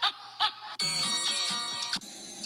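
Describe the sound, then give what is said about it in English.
A phone ringtone plays during a presentation about pizza: two short chirps, then a loud, sustained electronic melody with bright, buzzy tones that shift pitch, briefly breaking off and starting again near the end. No one speaks. “this is a phone-free presentation.”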